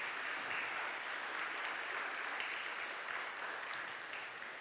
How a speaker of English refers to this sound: Yeah, we can clap. Yeah.